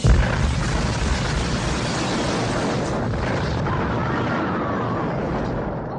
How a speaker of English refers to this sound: Yes. Frankly, this explosion sounds like everyone in that classroom was killed. Yeah, basically. That's how it seems.